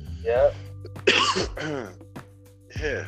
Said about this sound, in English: Yep. Yeah. Yeah. Like, breathe. What are you coughing for? What you coughing? Man, you talking about breathe, man. I am breathing. I just keep breathing in this. Like, I can't get no oxygen.